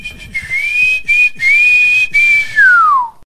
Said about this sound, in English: This is if this were a real bit of extra time, this is when the referee blow the whistle because it's finished.